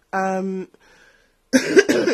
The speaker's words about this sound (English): excuse me, I've got an awful cough.